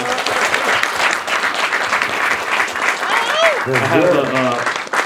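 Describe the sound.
A crowd applauds a producer with steady, dense clapping for several seconds, then a few whoops and a voice rise over the ongoing applause near the end.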